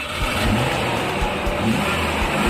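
A car engine revs up and down in a couple of rising surges over a steady rumbling drone, fairly loud, with no voices.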